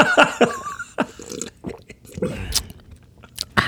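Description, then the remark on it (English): Someone sips and gulps water from a plastic Disney Beauty and the Beast cup with a plastic flower inside, with wet mouth sounds, swallows and a few sharp plastic clicks and taps scattered irregularly across a few seconds, no talking. “I'm drinking water from a plastic cup.”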